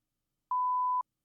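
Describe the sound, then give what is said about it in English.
A single steady electronic censor beep, hit by hand to scrub speech, at a mid-high pitch, lasting about half a second, clean and sustained with abrupt start and stop, alone against silence. “I'm just hitting the beep.”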